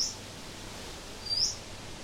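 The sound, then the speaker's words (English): Two brief, high-pitched bird chirps sound faintly in Burrawang, regional New South Wales, one at the very start and another a moment later, over a steady outdoor hiss with no talking. “he was chatting with us from Burrawang in regional New South Wales, complete with birds twittering in the background.”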